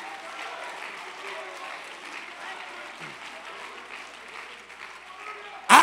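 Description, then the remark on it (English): A church audience claps steadily for several seconds, a dense wash of many hands mixed with raised voices shouting praise, ending in a sudden loud burst of noise. “You ought to clap your hands. You ought to lift up a shout of praise to your God.”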